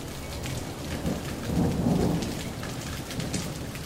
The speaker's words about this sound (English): if you're seeing the lightning and then hearing the thunder before you get to five Mississippis, that means that storm is pretty close